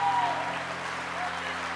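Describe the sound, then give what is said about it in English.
A church audience claps steadily together, a dense, continuous wash of many hands at an even loudness, with low sustained tones humming underneath throughout. “Come on, church. Keep clapping.”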